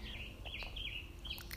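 Birds chirp steadily and loudly outdoors, a bright run of overlapping calls and tweets over a low background rumble, continuous throughout.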